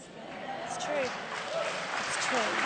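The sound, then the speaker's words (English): An audience claps in a steady, dense wash of applause that holds for the whole stretch, with a voice or two faintly rising over the noise. “You're clapping, but some of you don't believe that.”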